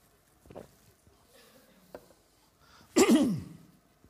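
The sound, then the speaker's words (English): Someone takes a drink of water: a couple of faint swallowing clicks in near silence, then a loud, breathy exhale of satisfaction after the sip. “Drink of water.”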